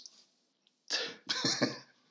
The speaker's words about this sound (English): I want to cough. How unprofessional of me.